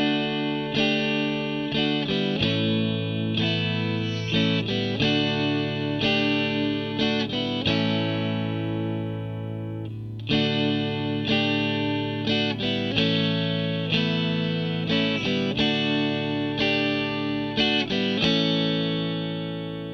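A slow rock intro of layered, distorted electric guitars playing sustained chords that shift every couple of seconds, loud and full, with no vocals.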